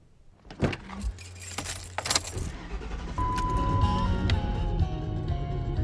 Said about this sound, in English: I'm in my car, a Lincoln Continental Town Car. We're on Route 17 going north